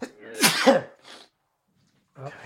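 sneeze

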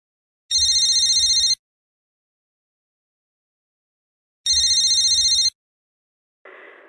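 telephone ringing

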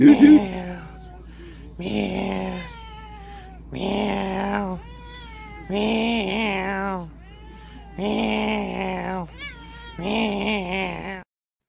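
cat meowing

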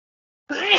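sneeze

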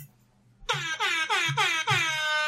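air horn sound effect

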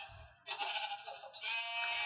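sheep bleating

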